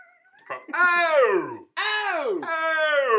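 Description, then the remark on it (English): A voice imitates heavy breathing and moaning: loud, drawn-out moans that slide downward in pitch, two long ones back to back after a short breathy start, with no words. “It's just like the heavy breathing from the Rocky IV workout montage.”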